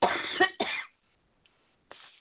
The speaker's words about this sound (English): I'm sorry, I'm coughing. Anyway, I'm glad I'm not coughing on you.